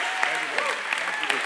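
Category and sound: crowd, audience applauding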